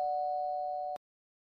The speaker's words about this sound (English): Suddenly, my doorbell rung.